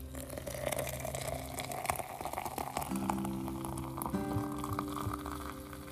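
Hot water pours steadily from a little red teapot into a cup holding three teaspoons of Nescafe, a continuous splashing gurgle whose ringing tone rises as the cup fills, with no talking over it.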